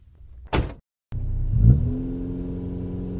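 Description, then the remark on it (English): A short thud, a brief pause, then a car engine turns over, revs up once, and settles into a steady rumbling idle. No voices. “Just get in the damn car.”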